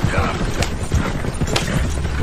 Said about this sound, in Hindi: और जब घोड़ा गाड़ी उसकी नजरों से ओझल होने लगी तो वो वहीं रास्ते में ठहर गई।